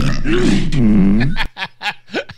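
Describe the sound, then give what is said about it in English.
Wendy Williams lets out a long, loud, rumbling burp, nearly a burp snart, lasting over a second, that cuts off abruptly and is followed by a few short, breathy bursts like stifled snickers. “Wendy Williams almost gave us a burp snart. That's what that was, I thought.”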